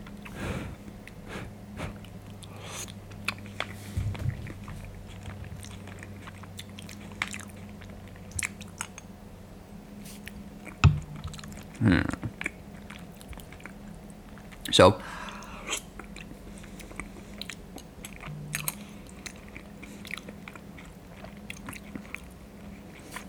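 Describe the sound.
Wet chewing and slurping of thick soup with potato and peas, with soft irregular mouth sounds and a few sharper clicks over a steady low hum; a voice says a brief word at the start.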